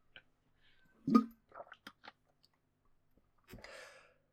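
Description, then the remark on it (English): Someone takes a sip of water: a soft gulp and swallow, a few small wet mouth clicks, then a breathy exhale, with no talking. “I'm just gonna take a drink of water and try not to break down while reading it, because it's really, really good.”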